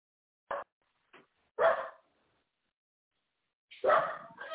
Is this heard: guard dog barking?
yes